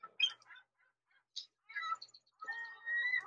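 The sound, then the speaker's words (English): A person imitates a seagull with a few short squawks, then a longer drawn-out wailing cry at the end, with brief quiet gaps between calls and no talking. “He's a chimp. Or could he be a seagull?”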